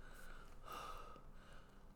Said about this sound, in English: Heavy breathing.